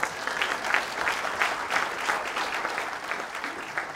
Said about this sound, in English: Another thank you to all of our sponsors. So could you put a round of applause too for everybody's sponsors?